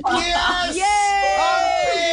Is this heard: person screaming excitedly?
yes